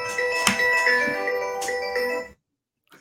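A phone ringtone plays a bright, melodic electronic tune with a few accented notes, sounding fairly close, then cuts off abruptly after about two seconds, leaving silence.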